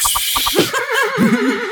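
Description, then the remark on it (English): Someone imitates a rowdy, annoyed horse in a stable: four quick clopping clicks, then a loud, wavering, trembling whinny that rises and falls for over a second, with no talking. “The horse is getting a little rowdy now.”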